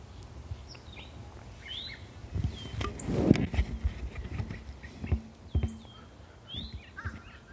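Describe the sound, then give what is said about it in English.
Birds chirp and call intermittently in the background, short bright calls scattered across the scene, while nearer thuds and clopping, like hooves or footsteps, sound over a steady outdoor ambience. “Other than the sounds all around you, the birds, the people.”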